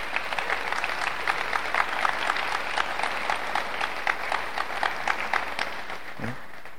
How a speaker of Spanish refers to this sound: Denle un fuerte aplauso al Señor.